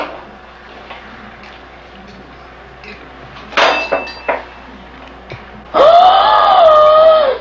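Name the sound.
woman screaming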